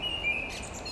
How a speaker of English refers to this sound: What kind of bird do you think that is? Blackbird. I think you're right.